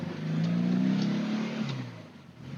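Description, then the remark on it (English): A European left-hand-drive car, driven in Australia, revs loudly through a Dansk sports exhaust with Weber IDF 40 carburetors: a deep throaty drone that swells and holds before easing off, with no talking. “I'm sure you can hear this car has a Dansk sports exhaust on it, and it also has Weber carburetors.”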